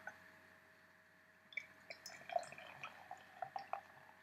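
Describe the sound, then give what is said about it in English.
Tuatara Pale Ale, a 5.8% APA, is poured into a glass just after being opened, a soft stream broken by quick bubbly pops, splashes and small fizzing sounds. The pouring starts after a brief quiet moment. “Pour it in.”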